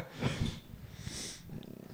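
Low, rumbling cat purring with a steady fluttering pulse, swelling in soft breathy waves as the cat inhales and exhales, fairly quiet, with no talking.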